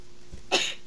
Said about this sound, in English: Bless you. Bless you. Well, that actually sounded like a sneeze,